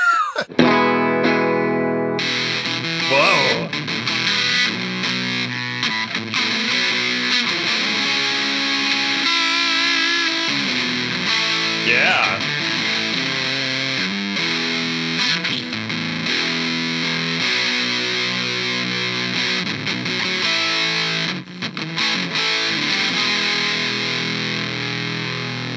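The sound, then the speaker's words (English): A thick, fuzzy distorted electric guitar played through a Fox Tone Machine fuzz distortion pedal covered in blue velvet plays continuously and loudly with sustained, buzzing chords and bends, a brief voice exclaiming once over the playing. “What kind of distortion pedal is that you got there today? That is a Fox Tone Machine, distinguished by the fact that it is covered with blue velvet.”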